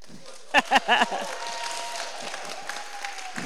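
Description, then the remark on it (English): A short, loud burst of audience clapping as a preacher is invited up at an evening gathering, just four or five sharp claps in quick succession, stops abruptly and gives way to a low murmur of voices. “No, just one clap.”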